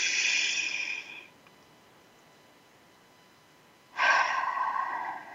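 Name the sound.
deep inhale and exhale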